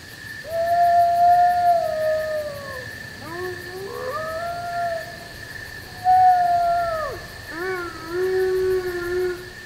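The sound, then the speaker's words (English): In a dark conifer forest, a lone timber wolf calls out among the pines and a large pack of timber wolves, a gray wolf subspecies, joins in: long sliding tones overlapping with higher yips and wavering cries from pups, rising and falling in waves, with no talking. “A lone wolf calls out among the pines, and a large pack of timber wolves and their pups chime in.”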